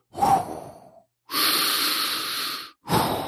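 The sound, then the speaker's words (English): A person imitates heavy, mechanical Darth Vader-style respirator breathing, mimicking a man who burst into the Church of Jedi breathing heavily: three loud, rasping breaths, the middle one long and hissing, separated by brief pauses, with no talking. “And then he burst into the church and started breathing heavily like this.”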